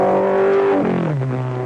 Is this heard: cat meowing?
no